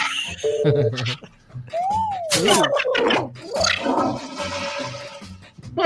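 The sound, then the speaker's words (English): A toilet flush sound effect gurgles and swirls for several seconds, with a rushing, watery hiss building toward the end, while people talk and react over it. “That one got flushed.”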